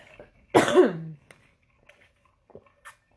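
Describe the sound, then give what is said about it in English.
A single loud cough bursts out, ending in a short throaty, voiced rasp, then fades into near silence with a few faint clicks and breaths. “And then he came up with another idea that I can't remember now because I'm trying to hold back a cough.”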